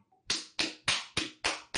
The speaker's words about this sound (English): There we go. Are you slapping your ass for us? Maybe.